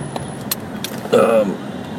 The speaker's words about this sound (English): Well, meanwhile, you hear a honk in the background. But yeah, there's not a lot of that. That's not an LA thing.